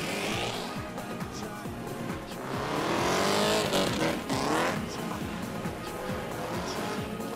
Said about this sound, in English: And now the engine is screaming and you're setting yourself up for the wall rub, like, and you're just watching.